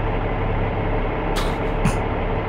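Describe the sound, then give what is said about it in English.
A diesel truck engine idles with a steady, loud low rumble, broken by two short bursts of hissing partway through. “It's 10 hours of a diesel truck idling.”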